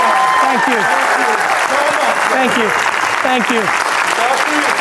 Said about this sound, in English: Please, let's give our guest speaker another huge applause.